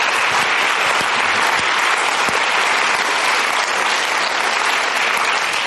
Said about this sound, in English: So I think a second round of applause for that. It's just amazing.